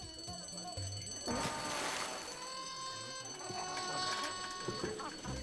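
A loud alarm rings continuously with a bright, shrill, multi-toned sound, swelling in bursts partway through, over a busy background of other noises.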